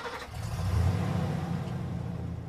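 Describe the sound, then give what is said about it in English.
A car engine rumbles low and builds as the vehicle pulls away, a steady mid-pitched drone that swells after a brief start and then holds. “Put your buckle on. We're going for a drive.”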